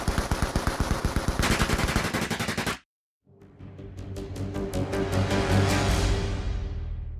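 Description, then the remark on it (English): Loud, rapid bursts of automatic gunfire from a drive-by shooting at a home crack out in quick succession, stop for a brief moment of silence, then resume in a second sustained volley of shots with no voices. “Then the gunfire began.”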